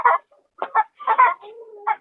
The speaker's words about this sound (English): Like they're kind of show-off noises. And sometimes when one starts showing off, the others, they start clucking too because it's like, oh yeah, I laid an egg earlier. I want to let you know that too.